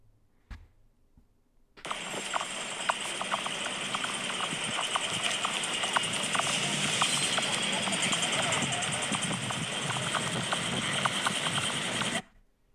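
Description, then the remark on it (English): A horse-drawn carriage crosses a river bridge: steady hoof clops and rolling wheels over a dense, rushing noise bed, loud, starting abruptly and cutting off after about ten seconds. “Horse-drawn carriage over a river bridge.”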